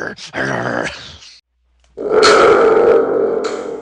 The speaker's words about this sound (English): Thunder tubed again. Yes, I'm on a roll. It's been a while since we've had the thunder tube in, so I thought I'd bring it back today.